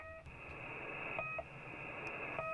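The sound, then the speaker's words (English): Short electronic pips from the shortwave radio station called the Pip: several brief beeps spaced irregularly over a steady hiss and droning tones, with no voices. “So there's a station called the Pip.”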